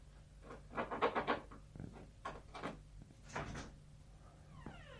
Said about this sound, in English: So that's the bathroom door. So he scratches at the door first and then he pulls the door open. I'm wondering if he's superstitious. Because he scratches at the bathroom door and then he can open it.